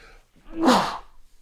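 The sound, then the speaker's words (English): A single sharp sneeze from a person with a cold bursts out after a brief quiet breath, with no talking around it, then fades quickly into near silence. “Give me just a second, because I think I have a cold, ladies and gentlemen.”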